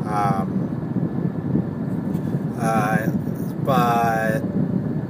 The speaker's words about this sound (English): sorry for heavy inconsistent traffic here